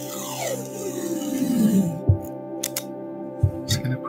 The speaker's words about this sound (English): Alright, so you're just lying there and just preparing my surgical tools.